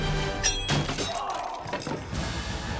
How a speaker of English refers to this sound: Before anyone could move, Graham lifted an enormous mace from beneath his furs and brought it down into the center of Henry's skull.